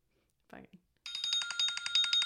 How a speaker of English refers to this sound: I can envision like Tom and Jerry, the round alarm clock shaking as that goes off